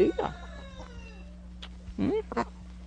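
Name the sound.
hen clucking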